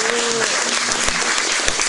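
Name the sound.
audience applause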